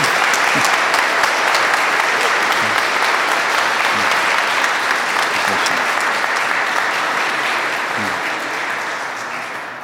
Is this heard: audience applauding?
yes